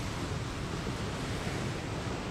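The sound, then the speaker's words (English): A large wave crests and breaks onto a white sandy beach, heard as a steady, full roar of rushing surf that holds an even loudness throughout, with no voices. “A large wave crests and crashes onto the white sand of the beach.”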